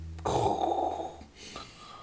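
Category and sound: vocal imitation, voice imitating snoring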